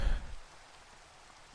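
Steady rain falls in a dense, even hiss with no distinct drops standing out, a little heavier at the very start, with no voices.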